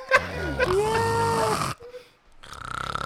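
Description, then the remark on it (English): Loud snoring noises from a person, in two bursts separated by a short pause, the second with a fluttering, rattling pulse; it sounds like a voice imitating snoring. “That nigga dick snoring.”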